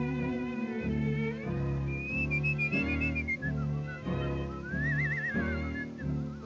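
whistling a tune

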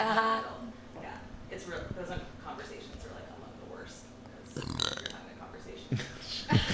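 burp

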